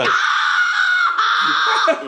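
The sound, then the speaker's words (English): A loud, sustained cartoon-style scream rings out for about two seconds, shrill and strained with a brief catch midway before it trails off. “with a great scream there”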